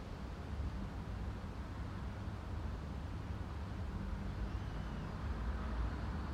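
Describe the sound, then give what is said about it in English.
A car hums by, a low, steady engine rumble with no sharp rise or fall, heard faintly on its own without any voices. “With the sound of the car, it can just be that, the sound of the car.”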